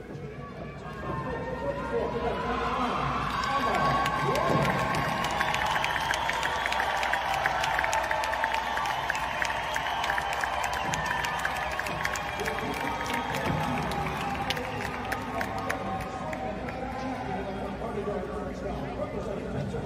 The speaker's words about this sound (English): Emma Wayant, a 21-year-old cisgender female who also happens to be an Olympic silver medalist, receive a great cheer from the crowd. which is then followed by a rather less enthusiastic response to Leah's first place medal.